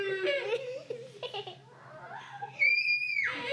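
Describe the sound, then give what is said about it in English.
A child screams into a bugle, producing a loud, shrill, sustained horn-like blare near the end, preceded by a few squeaky, breathy vocal attempts. “Oh, you're screaming into the bugle.”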